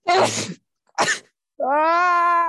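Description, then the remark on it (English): Two sharp, explosive sneezes from pollen allergies, close together, the second shorter, followed by a steady drawn-out vocal groan. Loud, with no talking. “Some strong allergies. You are going back to back.”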